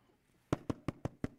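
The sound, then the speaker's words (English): Five quick, evenly spaced knocks on a door, crisp, rapping in a steady rhythm after a moment of near silence, with no one speaking. “He went to his company, knocked on the door.”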